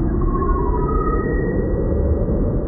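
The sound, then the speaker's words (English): Sonified Hubble and Chandra space telescope data of a star formation region of gas and dust: a dense, steady rumbling wash of low tones, with faint sustained whistle-like pitches drifting above it. No discrete beeps stand out, and no one speaks. “And so we really wanted to contrast the difference, the texture of those star formation regions of gas and dust from Hubble, and then those sort of beeps and boops from Chandra.”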